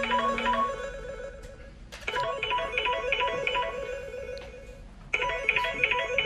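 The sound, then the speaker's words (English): A phone rings with a call from TalkSport, its melodic ringtone playing in repeating bursts of bright electronic tones that loop with short gaps between phrases. The ringing is moderately loud, with no talking over it. “plus I would think he would have Champions on his phone ringing”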